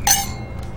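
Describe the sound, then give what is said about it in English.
A single bright clink of glasses tapping together in a toast, ringing briefly with a high shimmering tone before fading, clear over a low background hum. “Cheers.”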